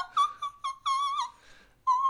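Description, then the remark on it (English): A voice produces a string of short, high-pitched imitated whistle tones, several quick chirps followed by a longer held note that fades and then returns, clear with no talking. “I really loved … little high-pitched her whistle tones”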